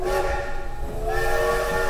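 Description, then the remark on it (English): A loud, sustained steam train whistle from a passenger train blows a steady chord of tones, its pitch shifting slightly partway through, with a rumbling, hissing undertone and no one talking. “I can't believe we've been on this train for hours, and I still haven't convinced you to sing even one Christmas carol with me.”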